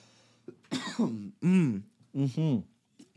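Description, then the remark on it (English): A loud series of coughs and throat clearing, several rough voiced bursts in quick succession with short pauses between them and no speech. “I'm going to take a break here because my throat, I'm about to cough.”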